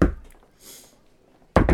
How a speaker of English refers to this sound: Here we go. Knock on the door.